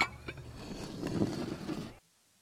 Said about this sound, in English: It's, you know what it is that makes a scene like that for me? It's like just the depth of it in terms of like you really get a sense that there's something in the background, that somebody's doing dishes further away,